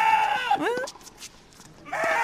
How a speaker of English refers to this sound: Do you think that's an animal or a human? I think that's an animal. Yeah, it is. It's a goat.